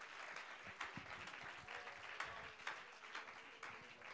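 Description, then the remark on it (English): A crowd of people clapping their hands in praise to the Lord, a dense, steady wash of applause that runs the whole time with a few sharper claps standing out, no voices heard. “Clap your hands to the Lord and let's praise Him.”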